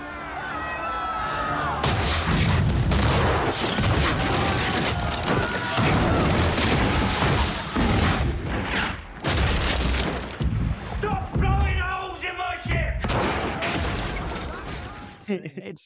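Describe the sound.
Repeated cannon blasts as the ship Black Pearl fights another ship boom through a loud, chaotic battle din, with crashing impacts and shouting voices filling the scene almost continuously.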